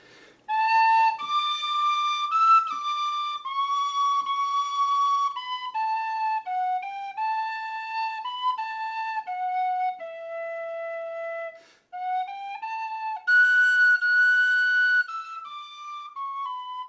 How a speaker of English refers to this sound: Am I trying the other whistle? That's a bit squeaky.